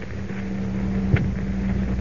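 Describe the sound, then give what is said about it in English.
The huge fan of a wind tunnel for testing new plane models at an aircraft plant starts up, droning with a low, steady mechanical hum and broad rumble, a single brief thump breaking in partway through. No voices. “Professor, that fan is starting up.”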